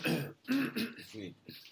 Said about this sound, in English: Should we cough? Sorry. Well, excuse me. It's a little dry in the house.